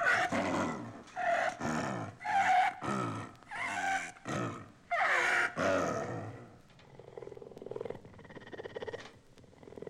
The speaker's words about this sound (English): This, with its peculiar inhalations, is the growl of the San Diego Zoo's rare snow leopard, Tibet the Second.